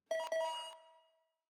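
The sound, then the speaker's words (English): A doorbell chime from an advert for Bark Nobel by VEM, a doorbell dogs cannot hear, rings out with two quick bright tones struck in succession, their ringing notes fading away over about a second. No voices accompany it. “Say goodbye to your dog barking up the wrong doorbell. Why? Because they can't hear it, but you can.”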